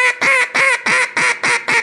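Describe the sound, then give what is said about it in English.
A duck call blown loud in a quick, steady series of about six raspy quack notes, each cut off sharply, with no talking. “I know that that's the note. I know it's going to be there when I hit the call”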